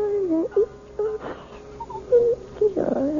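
A one-year-old baby whimpers in a string of short, high, wavering cries, broken by breathy gasps and brief pauses, moderately loud with no talking.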